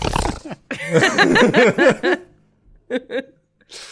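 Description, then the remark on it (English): A person vocally imitates a little pig going by, a rapid run of squealy grunts whose pitch swoops up and down in a Doppler effect, followed by two short grunts. “Yeah, like, getting, like, the Doppler effect of a little pig going, like...”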